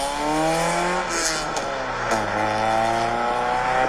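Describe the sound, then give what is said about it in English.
A Honda Civic engine with a raspy aftermarket eBay exhaust revs loudly, its droning pitch climbing and dropping a couple of times over a few seconds, with no one speaking. “VTEC! Dude! It sounds so good with that eBay exhaust.”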